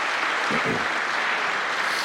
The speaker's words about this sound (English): Can we just give a hand clap of praise to our Lord and Savior this morning? Can we do that?